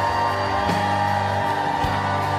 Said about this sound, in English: You want to clap? Let's give the Lord a big clap tonight. Somebody make a joyful noise.